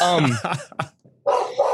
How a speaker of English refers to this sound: Of course, now my dog decided to go crazy.